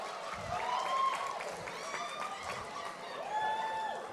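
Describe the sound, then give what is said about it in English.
A group of people asked to act as a crowd cheers in a steady, noisy roar, with a few higher shouts and whoops rising and falling above it, holding an even loudness for about four seconds. “So let's hear the big cheering.”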